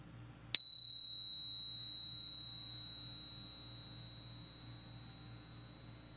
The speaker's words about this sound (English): Okay, so to start the meditation, I will ring the bells once.